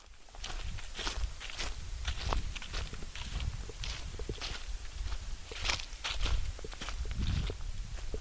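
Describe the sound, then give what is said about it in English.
Steady footsteps crunch through dry leaves on a gravel path in thick forest, in a wilderness area near the Hickory Ridge Fire Tower in Indiana, a rhythmic series of crisp, scratchy steps with bright rustling bursts and no talking. “We can hear the sound of leaves crunching beneath our feet.”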